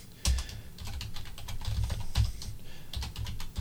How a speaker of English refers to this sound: I'm just typing in a few names here. I'm gonna put Mickey Mouse and Donald Duck, Tom and Danielle.